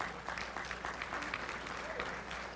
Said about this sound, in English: Come on, clap your hands for him. All right.